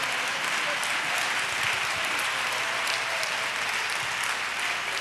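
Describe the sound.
A large group claps their hands steadily for several seconds to praise the Lord, a dense, continuous wash of applause at even loudness, with faint voices mixed underneath.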